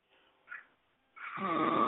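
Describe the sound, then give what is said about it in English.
Someone snoring: a soft breathy inhale, a short hiss, then a loud, rough, rattling snore that swells and holds to the end. No one speaks. “Damn, that white boy went to sleep on your dumb ass.”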